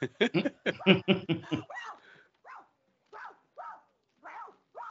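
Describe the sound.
A person barking like a dog: a quick run of loud barks, then a string of higher, spaced-out yips that grow quieter.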